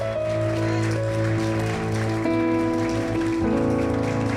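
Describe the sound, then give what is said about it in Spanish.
A church audience applauds the Lord steadily for several seconds at a morning service, a dense wash of clapping that holds over sustained keyboard chords shifting pitch every second or so. “Bien, pueden darle un aplauso al Señor en esta mañana.”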